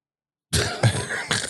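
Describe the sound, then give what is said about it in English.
After a moment of silence, a loud sneeze bursts out, a harsh, breathy blast that swells in a couple of quick pushes over about a second, with no talking. “Bless you.”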